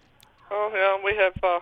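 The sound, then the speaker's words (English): Five pet birds call loudly in a room, a quick run of three harsh, tonal chirps and squawks in under two seconds, with no talking over them. “We have five birds in the room.”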